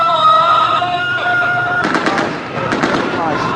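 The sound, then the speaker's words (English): Sustained chanting prayers give way to loud, rapid bursts of celebratory automatic gunfire by Syrian rebels after capturing an army base in Mayadin, eastern Syria, the shots crackling repeatedly over the crowd for the rest of the moment. “The rebels celebrated with prayers and gunfire.”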